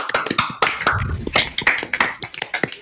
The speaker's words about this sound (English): Okay, that was the most disappointing applause I've ever heard in my life.